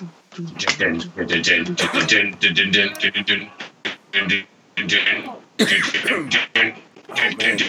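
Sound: coughing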